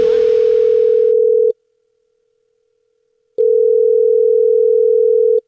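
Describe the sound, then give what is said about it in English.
A telephone ringback tone, heard through the line as a prank call to a gym rings before anyone answers: two long, steady, clear tones with a silent gap between them. It is loud, with no talking. “Thad (Jubal Fesh) calls the gym, from the gym in this Phone Prank!”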